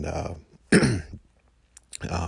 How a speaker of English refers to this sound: I took one a couple days ago because I thought, you know, I'm sitting here coughing and feeling kind of congested and stuff, but it came back negative.